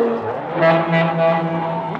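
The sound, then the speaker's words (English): A truck horn blares in one long, continuous honk as the truck passes by, loud, holding a steady low pitch with a slight swell in the middle. “Watch the truck!”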